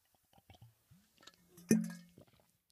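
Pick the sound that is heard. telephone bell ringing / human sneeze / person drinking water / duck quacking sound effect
person drinking water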